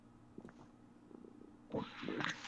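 A cat lying on a phone purrs against its microphone, a low steady buzzing rumble that swells louder and rougher near the end as the cat shifts.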